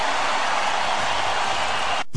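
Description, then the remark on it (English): A loud, sustained roar from the basketball crowd at Oracle arena as the game is tied at 105, a dense wall of cheering noise that holds steady for about two seconds before briefly cutting out near the end. “Listen to this crowd at Oracle.”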